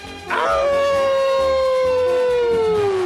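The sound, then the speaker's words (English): A single long wolf howl rises quickly and then holds a steady, slowly falling tone for about three seconds, loud and clear with no talking. “I got plenty of room on that bandwagon because we got another lone wolf.”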